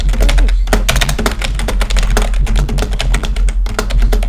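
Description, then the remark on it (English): Rapid, steady typing on a membrane keyboard with crisp, clacky keystrokes that sound like a mechanical keyboard, loud, with a low hum underneath and no speech. “It's actually a membrane that sounds like a mechanical keyboard because I'm too poor for an actual mechanical keyboard.”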